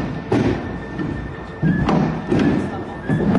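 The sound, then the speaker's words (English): Baseball-sized hailstones slam onto a roof during a hailstorm in Arkansas in heavy, irregular thuds, several loud impacts landing over a constant roaring wash of storm noise, with murmuring voices faintly underneath. “And they show the video out the window of these giant hailstones the size of baseballs landing on the roof.”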